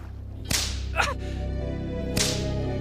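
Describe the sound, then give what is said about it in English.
Three sharp whip lashes crack against a sailor's back as punishment for deserting his ship, at uneven intervals, each a loud, snapping strike standing out over a steady low rumble in the background. “If you don't want to feel the lash of a whip across your back.”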